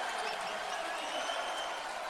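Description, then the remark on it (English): The College of Charleston Cougar basketball crowd cheers and applauds in a dense, continuous roar during a game against Gardner-Webb, holding steady for about two seconds, with no clear voices standing out. “So now the Cougar crowd has come to life.”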